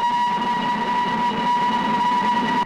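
A steady train sound with a sustained whistle-like tone held over a continuous rumbling, clattering rail noise, loud and unbroken throughout, with no voices.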